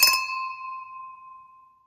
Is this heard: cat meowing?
no